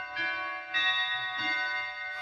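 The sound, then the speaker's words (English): A clock chimes the quarter hour, four resonant bell-like tones struck in steady succession, each ringing on and overlapping the next, clear with no voices. “The clock, it struck a quarter past.”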